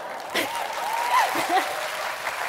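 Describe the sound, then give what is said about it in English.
Light audience clapping, a steady patter of hands lasting a couple of seconds, with faint voices or a brief whistle-like tone rising over the claps. “One clap, that's good.”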